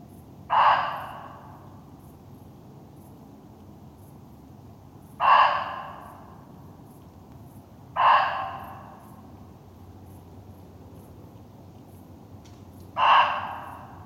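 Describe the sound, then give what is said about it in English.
A muntjac deer barks four times, each call a short, harsh, loud yelp with a brief fading tail, spaced irregularly several seconds apart over a quiet background with no talking. “And there are loads of muntjac in the muntjac, a small deer, little deer, just to be, and they do have a very strange voice.”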